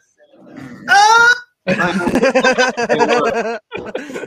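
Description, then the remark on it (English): A loud, squeaky fart sound played by an Alexa smart speaker asked for a big fart: a low rumble swells into a brief high-pitched tonal blast, then a long sputtering, voice-like stretch follows, loud. “Alexa! Give me a big fart! Here comes a big fart.”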